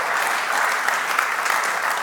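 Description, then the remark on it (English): A large crowd gives the Lord a shout and a hand clap, clapping steadily and densely, with mixed shouts and cheers blending into a continuous roar of applause that stays loud and even throughout. “Come on, as each day passes by, can you give the Lord a shout and a hand clap?”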